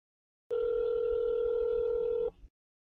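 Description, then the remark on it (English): A loud, steady telephone tone holds for about two seconds, then cuts off, as a man places another phone call, dialing out. No one speaks. “Oh, no, he's making another call here.”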